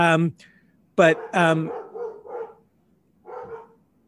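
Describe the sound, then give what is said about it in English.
Dogs bark in a few loud, sharp bursts at home, one early yelp followed by two quick barks, then quieter muffled sounds that may include faint voices. “sorry about all these crazy dogs.”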